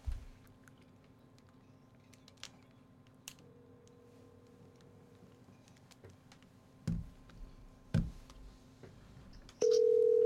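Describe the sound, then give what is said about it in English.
A phone's outgoing ringing tone: one faint two-second ring, a couple of sharp clicks, then a much louder steady ring starting near the end. No one speaks. “Could you answer that, please? I'm trying to call, answer.”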